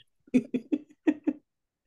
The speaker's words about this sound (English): I was having a coughing fit.